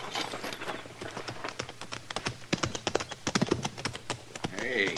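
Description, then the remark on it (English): Horses' hooves clip-clop in an irregular, overlapping patter across the ground, steady, with a few louder strikes midway and faint voices in the background. “Get on off those horses.”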